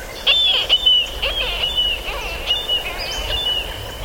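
Marbled murrelet, a small relative of puffins, calling: a high, thin whistling tone that carries through the whole clip, broken by quick rising and falling chirps, clear over a soft background hiss.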